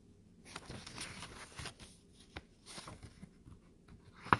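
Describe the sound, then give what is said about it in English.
Quiet paper rustling and fumbling as fingers clumsily handle and turn book pages, with soft irregular scrapes and a sharper flick near the end, no voices. “Fingers having issues turning pages.”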